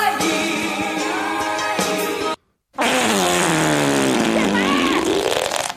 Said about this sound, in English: Didn't work so well after that. I should have added more than one fart noise.